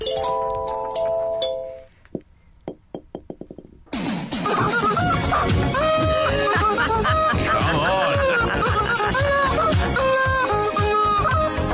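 Squeaky rubber chickens honk out a song melody, opening with a brief tune, then a few sharp isolated hits, before a loud, dense chorus of squealing notes carries the tune to the end.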